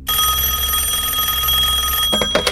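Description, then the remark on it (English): A telephone rings loudly, one continuous trilling ring lasting about two seconds before cutting off, with no one speaking. “Listen, don't you have anything better to do on Christmas Eve than making prank phone calls?”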